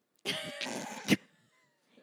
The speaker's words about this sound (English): Excuse you? I'm really sad that for my first burp, it wasn't louder. Well, hopefully you will do better next time.